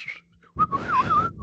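A short, bright whistled phrase sliding up and down in pitch, loud and close, starting abruptly after a brief quiet moment with some low background rumble underneath.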